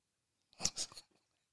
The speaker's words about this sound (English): This man had to cut his mic off. But while we waiting on him to finish chewing